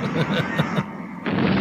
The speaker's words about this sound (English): The building exploding. The fire that started. Instead of, like, explosions, it's just fire. Yeah, that's the building exploding right there.